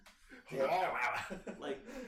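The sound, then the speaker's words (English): A person mimics a dog growling: a rough voiced snarl of about a second followed by a couple of shorter grunting bursts, with no other sounds around it. “What's the dog doing? Dumb and Dumber be like, fucking growling at you.”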